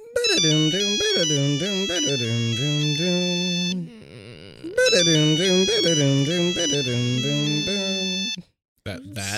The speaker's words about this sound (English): Everybody hears it. It wakes you all up. Yeah. You see that it is a call from Colin. On our human phones? On your human phones.